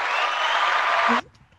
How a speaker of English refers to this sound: I'm gonna give myself an applause. I have this little mixed board. I'm gonna give myself an applause.